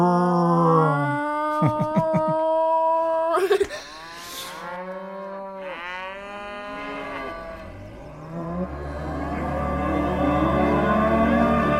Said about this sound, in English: I was referencing the THX sound effect with the cow. Oh, with the cow.